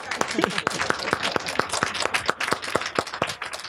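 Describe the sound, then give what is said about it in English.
An audience claps steadily, sharp loud hand claps arriving in a fairly quick, even rhythm throughout, with a murmur of voices underneath. “Clap that up.”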